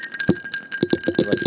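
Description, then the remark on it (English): Ice cubes clink against a glass in a quick, irregular series of bright taps, each with a faint ringing tone that hangs between hits. No one speaks. “You like that ice? ASMR ice.”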